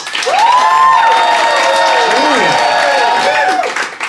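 A live Phoenix audience, applauding to vote on who is in the right, bursts into steady, loud applause with cheering and rising whoops layered over the clapping, sustained for about four seconds before tapering slightly at the end.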